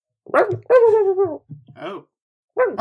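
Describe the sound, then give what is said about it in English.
A voice mimics a dog and a cat yelling at each other, with sharp yelps, a long wavering yowl and short growly bursts, loud and in quick succession. “You guys just hear a dog and a cat yelling at each other.”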